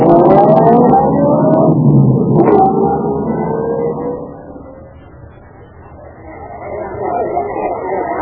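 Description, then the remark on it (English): A car engine revs, its pitch climbing and shifting as the vehicle pulls away to drive to a hotel, then dips quieter before swelling again with a steady motor rumble. “Then I got back into my car, drove to the hotel”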